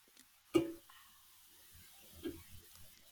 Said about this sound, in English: That was actually a water bottle.